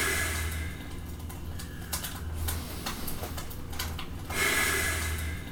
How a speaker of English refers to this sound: has to methodically control his breathing.